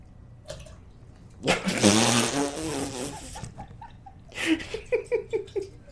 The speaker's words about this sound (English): just tried to pour... bang from one can to another can and got it all over his mouse pad.